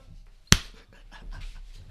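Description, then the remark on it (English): A single sharp hand clap cracks out near the start, loud and close, then fades into quiet room noise with faint breathing-like rustles. “That's the synchronization clap.”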